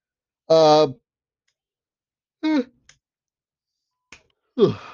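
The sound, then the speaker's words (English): A person lets out a voiced yawn lasting about half a second, followed by a couple of shorter breathy vocal groans with a downward pitch and a few faint clicks. “First yawn of the show.”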